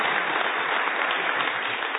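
A church audience claps steadily for the missionaries and ministries it supports around the world, a dense, even wash of many hands applauding at a constant moderate loudness throughout, with no voices standing out.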